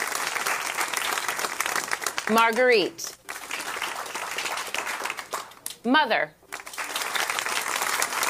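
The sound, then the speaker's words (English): A studio audience claps steadily and continuously, a dense crackling wash of applause that never lets up, while a voice briefly announces the Best Live Action Short Film nominees Detainment and Fauve over it. “Is that fake clapping?”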